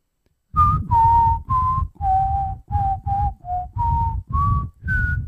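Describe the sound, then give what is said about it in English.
A person whistles a short song melody, about ten distinct notes rising and falling in pitch, fairly loud, with no talking. “I don't know what you whistled.”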